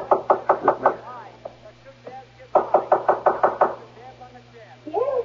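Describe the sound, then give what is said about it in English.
Two quick bursts of knocking on the door of a mother's room in a house, each about six sharp raps in a fast rhythm, separated by a short pause, with a faint voice murmuring in between and at the end. “This is Mother's door here.”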